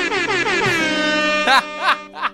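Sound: air horn sound effect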